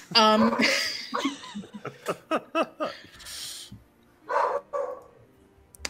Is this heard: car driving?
no